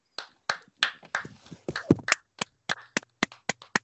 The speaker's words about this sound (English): But before we get on to that, let's just have a round of applause.